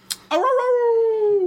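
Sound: person imitating a howl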